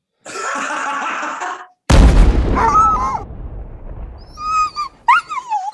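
A dog growls for over a second, then a sudden loud boom cuts in, followed by a few high, short whimpers and yelps trailing off.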